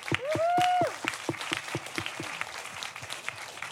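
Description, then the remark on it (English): Audience applause: a scattered stream of crisp handclaps runs steadily throughout, opening with a brief rising-and-falling whistle or whoop over the clapping. No one speaks. “If you could please give him a round of applause and not encourage him at the same time.”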